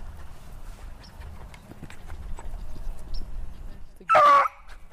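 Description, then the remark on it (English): Over a low background of rustling and footfalls, a beagle chasing a rabbit lets out one short, loud, high-pitched squeal near the end, a piggy-sounding cry from a dog on the chase. “Hear the piggy noises?”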